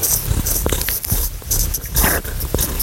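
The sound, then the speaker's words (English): A cat named Tapioca purrs steadily in a low, throaty rumble that pulses in soft waves, with a few brief scratchy rustles and clicks layered over it and no voices. “Alright, well that's just purring, but I suppose that means that she enjoyed it, as did I.”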